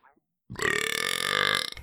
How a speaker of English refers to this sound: That was a powerhouse. That's going to be one of those burps I have to make quieter in the edit.